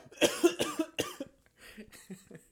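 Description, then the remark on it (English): A loud burst of four harsh, wet coughs in rapid succession from someone who has choked on water, followed by weaker, sputtering coughs and throat noises that fade over the next second or so. “I just choked on my fucking water.”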